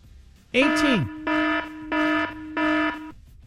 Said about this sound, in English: And by the way, the alarm went off for 18 minutes.